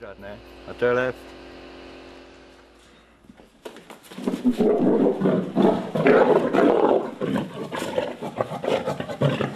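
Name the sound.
lion roaring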